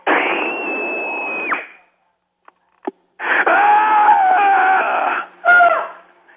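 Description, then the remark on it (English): A man lets out three raw, strained screams left as a voicemail message, the first and middle ones long and sustained, the last short, with brief pauses between, sounding thin and tinny like a phone line. “and I'm going to leave my scream.”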